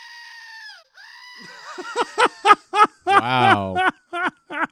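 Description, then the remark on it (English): A screaming goat toy, its base held down at the top by its feet, lets out a long, drawn-out electronic scream, pauses briefly, screams again, then breaks into a string of short, loud, choppy bleating bursts. “Oh, he just keeps going if you hold it down.”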